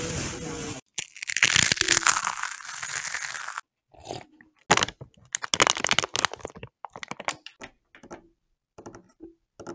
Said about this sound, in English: ASMR, which includes drinking a drink, chopping carrots, chopping an apple, eating an apple, crushing a bag of chips.